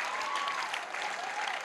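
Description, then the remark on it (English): Steady audience applause for a 91-year-old man, many hands clapping together in a dense, continuous patter that holds at an even level throughout, with no voices standing out. “Give him a clap.”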